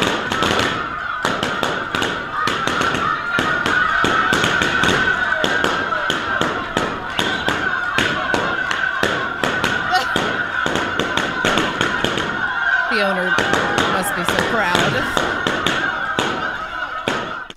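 A dog pops 100 balloons in a world-record feat, a rapid, irregular barrage of loud, sharp bangs over a steady high-pitched squawking like chickens clucking.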